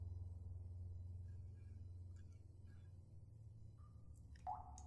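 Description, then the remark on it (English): A single water drop plinks near the end over a steady low rumble, with a few fainter drips earlier, giving a hollow, echoing quality. “This wasn't a dripping sink, it was something closer to an echoing drip of water.”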